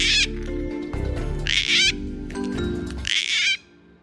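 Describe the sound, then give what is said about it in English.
Three harsh, creaky gang-gang cockatoo calls ring out at regular intervals over a steady musical backing with deep bass tones, loud, before everything cuts off abruptly. “The biennial Bird of the Year poll is super fun and go gang gangs.”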